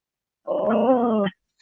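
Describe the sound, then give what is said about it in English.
A female dog, Toby, lets out a single drawn-out growl lasting under a second, fairly loud, excited by another dog walking down the street, with a brief new sound starting just as it ends. No one speaks. “Yeah, my dog's, there's another dog walking down the street, so she's a little excited.”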